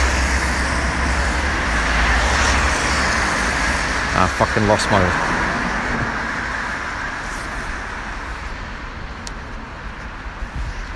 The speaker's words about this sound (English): As I press the button to cross the road, all the cars have stopped.